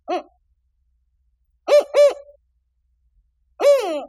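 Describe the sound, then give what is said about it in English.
A spotted owl's territorial hooting: one short hoot, a pause, two quick evenly spaced hoots, then a longer wavering final hoot, clear, with silence between. “The territorial call of a spotted owl is unmistakable. It's four notes.”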